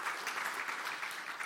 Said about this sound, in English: And I think we deserve to give a round of applause to people who are around who've done such an amazing job.